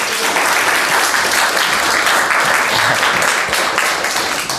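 A crowd claps steadily and loudly, a dense wash of applause that holds at full strength for several seconds without pause, with a faint murmur of voices underneath.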